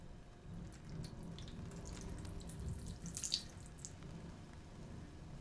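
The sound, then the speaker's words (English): Water is poured onto a stone, splashing and spattering continuously for several seconds, with a few brighter splashes midway. Moderately loud, no voices. “But what happens when I pour the water onto the stony heart?”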